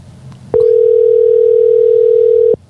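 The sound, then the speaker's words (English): A loud, steady telephone tone sounds while a call is being placed, holding one mid-low pitch for about two seconds, starting and stopping abruptly over a faint low background hum, with no one speaking. “I bet we get voicemail.”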